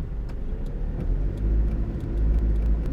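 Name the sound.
car backing up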